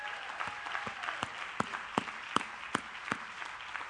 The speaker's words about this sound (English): Can we give the single moms a hand?